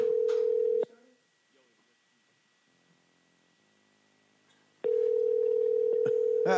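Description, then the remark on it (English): A phone line rings twice as a call is placed to a coach, each a steady electronic ringback buzz separated by about four seconds of near silence, clear as if heard through a handset. “I just called him.”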